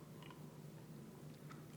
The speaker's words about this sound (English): let's take a sip of my under $10 wine